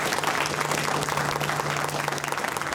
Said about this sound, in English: A huge round of applause for Alan.